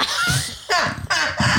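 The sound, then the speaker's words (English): A woman hiccups: three or four abrupt, loud bursts with squeaky, whistling chirps in between, coming in a quick irregular rhythm with no talking. “She hiccuping. I saw you hiccup.”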